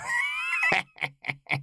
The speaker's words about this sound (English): I need to pause because there's a cat stuck in this room with me that's meowing to get out.